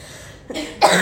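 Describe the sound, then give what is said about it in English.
Two quick coughs in succession, the second louder and harsher than the first, with no talking during them. “The cough's getting better.”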